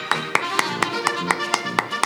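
Hands clap in a steady, even rhythm, about four sharp claps per second, with a continuous tonal hum running underneath the whole time.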